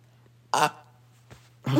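A loud, rough burp bursts out, followed by a faint short grunt and then another strong, raspy belch-like sound, all over a steady low hum with no talking.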